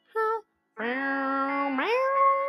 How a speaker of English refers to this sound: This is basically just cat meowing. My version, at least.